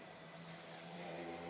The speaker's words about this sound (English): Sorry about the motorbike in the background.